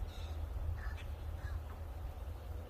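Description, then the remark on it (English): A few crows caw, three or four short, faint calls spread across a couple of seconds over a steady low outdoor rumble. “The crows were just doing that.”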